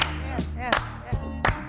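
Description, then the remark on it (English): A slow clap for recreational marijuana becoming legal in California: about five sharp hand claps, evenly spaced roughly a third of a second apart, over a steady low tonal backdrop with no talking. “So will we slow clap recreational weed?”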